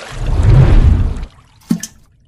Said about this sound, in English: Actually, let me make another bubble real quick.